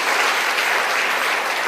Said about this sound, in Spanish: Dele palmas al Señor de la gloria.